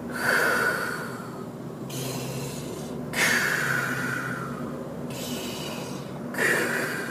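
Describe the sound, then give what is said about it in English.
Heavy, rhythmic Lamaze breathing into the microphone, with forceful puffed exhales alternating with longer inhales in a steady patterned cycle. No speech. “And so basically, she did the only thing she knew, which was she taught me Lamaze breathing right there, then and there, like the...”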